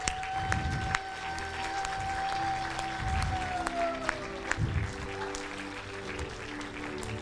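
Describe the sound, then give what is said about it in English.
A church audience applauds steadily for several seconds for people who raised their hands to receive prayer, a dense, even wash of clapping with a few sharper claps standing out, while a sustained tone hums faintly underneath. “Come on, we can give these guys a huge round of applause.”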